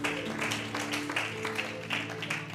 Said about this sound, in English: Can you clap your hands before you're seated tonight? Hallelujah, Jesus.